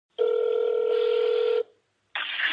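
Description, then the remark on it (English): A telephone line tone rings for over a second, falls silent briefly, then a second burst starts, like a call ringing through. No one speaks; the tones are clear. “First, I called around looking for sleep doctors.”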